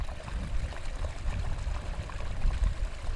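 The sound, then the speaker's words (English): A small mountain stream of crystal-clear water trickles steadily, its rivulets and rills burbling and splashing in a continuous, textured babble with a soft low rumble underneath and no voices. “It's a composite of rivulets and rills.”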